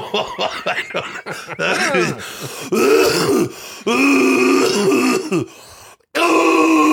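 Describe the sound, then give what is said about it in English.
A loud, exaggerated fake performative cough and throat clearing, drawn out into several voiced, groaning bursts over a few seconds, with no words spoken. “That last one wasn't even a cough. Performative cough.”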